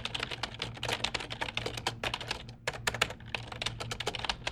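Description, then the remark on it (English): Rapid, steady typing on a computer keyboard, with dense clicking keystrokes, a few brief pauses between bursts, and a low hum underneath. No voices. “So maybe that's why pounding on the keyboard always seems to give me a headache.”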